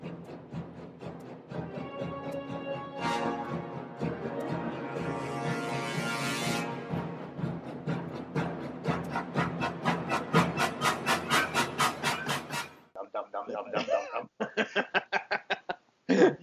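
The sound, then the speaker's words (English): The theme music from the shark film Jaws: orchestral tones that swell into loud, repeated pulsing strokes that quicken steadily, then break into short choppy bursts near the end. “The music that made you scared to get in the shallow end of a swimming pool.”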